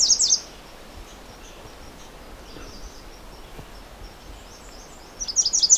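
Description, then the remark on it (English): High, thin songbird notes in rapid bursts, loudest at the start and again near the end, with softer chirps scattered between over a quiet outdoor background. A black-and-white warbler is right in front of the listener, and no one speaks. “Also have a black and white warbler right in front of me as well.”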